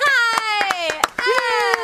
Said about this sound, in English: I'm clapping for myself. That's fine. It's perfectly fine.